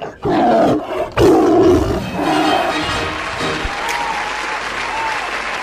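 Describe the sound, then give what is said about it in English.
Two loud, deep roars from trained tigers in a performing act ring out in quick succession, their growling tones fading as a steady wash of crowd applause takes over and carries on to the end. “It's that act. Feline and a trained tigers.”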